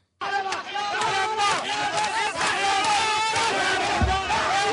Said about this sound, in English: It looks like a riot ahead of 7-Eleven. It really does. It looks like all the 7-Eleven workers went on strike.